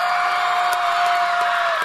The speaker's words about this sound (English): Well, it takes a lot of work to pull off the Desperation Conference, and I want to have a huge applause and invite these people to the stage. Would you give it up for DLA?